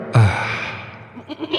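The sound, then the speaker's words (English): A single loud, quavering goat bleat, most likely a person's voice imitating the animal, starting abruptly and trailing off into a breathy tail, followed by faint vocal noises. “And a goat.”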